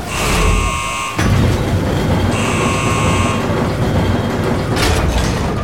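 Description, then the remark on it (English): Two long, harsh electronic buzzer blasts sound over a loud, steady mechanical rumble as heavy hydroponics pressure doors slide shut, ending with a brief hissing clunk as they seal. “Sealing hydroponics pressure doors in 3, 2, 1...”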